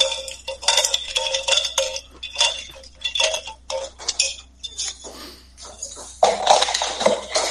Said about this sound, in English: So one part liqueur 43. It says in the instructions to gently stir to combine the flavors.